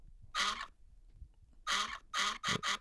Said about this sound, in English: Okay, this is what you were doing, was it? Duck quack. You found a new little thing to play with.